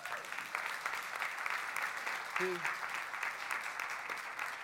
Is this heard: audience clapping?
yes